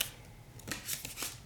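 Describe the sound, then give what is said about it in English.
A deck of cards being shuffled for a card game, a quick series of soft papery riffles and flicks in short bursts, with no voices. “I wasn't finished shuffling.”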